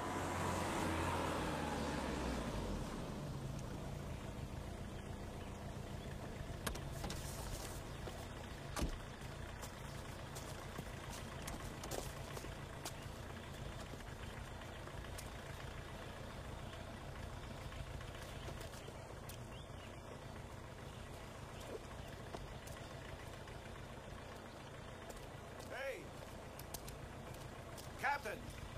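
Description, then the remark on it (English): A car engine idles with a steady low rumble after the car is pulled over to a stop, joined by a few faint clicks and soft thumps. “Would you please pull over the car?”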